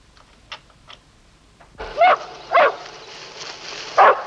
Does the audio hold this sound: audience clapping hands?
no